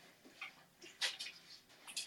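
Soft, high-pitched whimpers and squeaks from a litter of five puppies come in several brief, irregular bursts, faint, with no talking.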